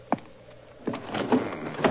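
window being closed

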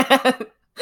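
suppressed burp

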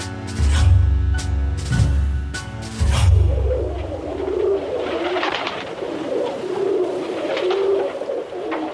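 pigeon cooing

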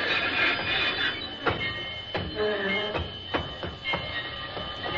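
train running on rails

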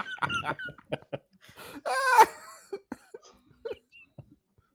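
coughing fit

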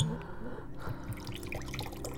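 water being poured

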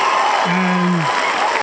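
applause sound effect

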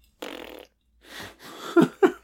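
fart-like noise

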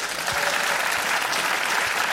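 audience applause

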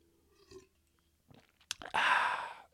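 drinking water

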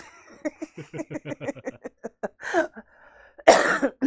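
coughing

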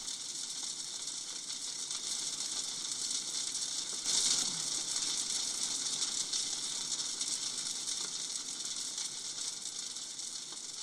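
crackling fire

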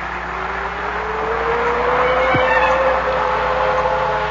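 car driving

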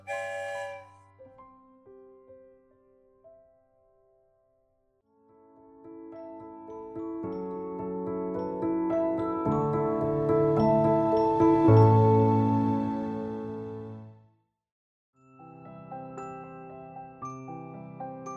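train whistle

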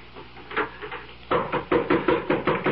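knocking on a door

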